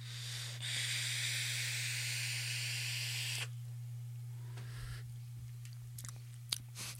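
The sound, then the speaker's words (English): A steady, airy hiss of someone drawing on an electronic cigarette vape set to 80 watts with only the bottom airflow open, lasting about three seconds, then quieter breathy rustles and a few small clicks, over a constant low electrical hum. “That is a damn good draw.”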